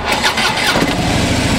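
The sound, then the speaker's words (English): A three-wheel Harley motorcycle engine cranks and catches, its low, rumbling pulses settling into a steady, loud throbbing idle with a broad mechanical roar. “Linda and Denny Roberts plan to hitch a trailer to their three-wheel Harley before they travel out to see Mount Rushmore this summer.”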